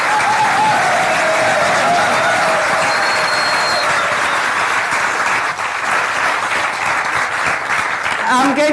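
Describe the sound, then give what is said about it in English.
Sustained, loud applause from a crowd, a dense steady patter of many hands clapping for the full length, with a few whistles and cheering voices rising above it. “And I really do think they deserve a massive round of applause.”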